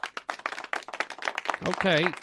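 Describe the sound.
A live audience claps in a steady patter of sharp hits, while a voice rises over the applause near the end with a wavering cheer.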